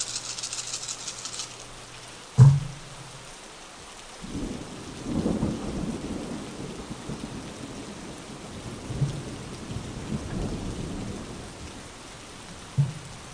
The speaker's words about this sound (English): What are these thuds? Me rolling dice, rerolls. Giant dice?